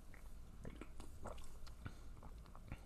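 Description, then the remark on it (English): Someone quietly sips freshly opened mint sparkling water, with soft wet mouth clicks and small crackling pops scattered over a few seconds against a faint low hum. No one speaks. “All right, I'm going to take that sip.”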